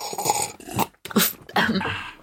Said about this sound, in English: I love how you almost kill yourself every week trying to take the loudest sip possible. But I didn't this time. This time I live. I saved myself in time.